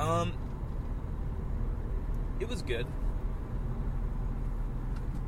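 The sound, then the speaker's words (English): A steady, low roaring rumble fills a car interior, like a furnace running, constant throughout with a brief spoken remark near the start. “There's a weird noise going on in my car right now. I don't like it. Sounds like, a furnace.”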